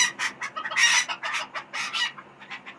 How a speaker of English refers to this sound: That's some rapage going on. Chicken rapage.